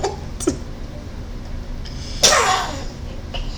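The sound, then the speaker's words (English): A single sharp, breathy sneeze bursts out and trails off quickly, preceded by a faint short puff of breath, with no talking. “Bless you, little baby.”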